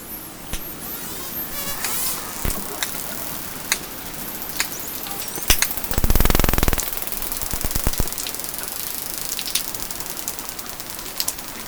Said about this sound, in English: drops a hydrophone into the water to see if she can pick up some of the sounds the dolphins are making as they feed.